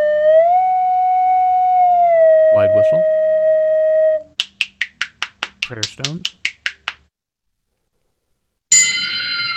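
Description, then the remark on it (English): Crotales played on a timpani: a bright metallic tone rings steadily and bends slightly in pitch, then a quick run of about a dozen sharp, ringing metallic strikes follows. “That's crotales on timpani.”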